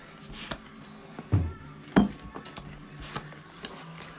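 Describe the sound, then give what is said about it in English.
Playing cards being dealt onto a hard tabletop, three to each player: a string of crisp slaps and flicks at an uneven pace, a couple landing louder than the rest, with no talking. “If you just want to quit, just deal out three of those to each of us.”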